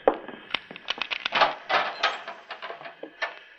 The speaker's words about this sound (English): I'll open the cell door, Mitz. You two hombres stand back.